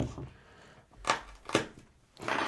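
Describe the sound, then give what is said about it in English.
Two short, sharp crunching bursts from a spoon pressing down on a cardamom pod to crush it and take off the husk, with a third rougher crackle starting at the end; fairly quiet, no talking. “So you got to take off the outside, the husk. Yeah, let's do a little. Let's crush it with the spoon here.”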